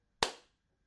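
One sharp, loud burst of hands clapping together in unison as a group claps at the end of a recording, a single crack that fades quickly into near silence, with no voices.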